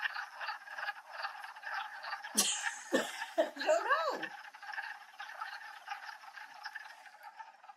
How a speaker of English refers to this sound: Well, if you've heard any of those strange alien noises, well, you've got some frogs nearby. Awesome. It's springtime, so the frogs are back.